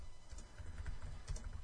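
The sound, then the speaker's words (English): Rapid keyboard typing, a steady patter of light clicks with a few sharper keystrokes, fairly quiet, with no voices. “Oh, he's typing back.”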